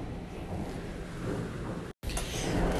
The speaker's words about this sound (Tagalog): Napakalakas ng hangin, sobra. Parang aangat na yung bubo mo.